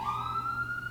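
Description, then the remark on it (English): A fire department's emergency siren wails with a steady, slowly rising tone over a low rumble, fairly loud, heard from a recording spot right across from the fire department, with no one talking. “The sirens. So where we're recording is right across from the fire department.”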